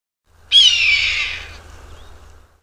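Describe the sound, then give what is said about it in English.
A single loud, raspy red-tailed hawk scream rings out clearly for about a second, then trails off into a faint low rumble of background noise. No one speaks. “In addition to raptors like the red-tailed hawk.”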